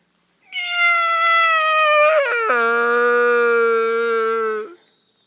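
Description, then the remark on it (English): A hunter imitates a sika stag's roar during a morning hunt around 10 o'clock: one long, loud, nasal wail that starts high, breaks abruptly to a lower drawn-out tone, then cuts off cleanly, with no talking. “decided he's going to do another roar and see what comes of it.”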